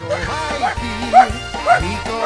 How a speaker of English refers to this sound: Uh-oh, something's got the dogs barking. Just the mention, because you said you were going to play some polka music.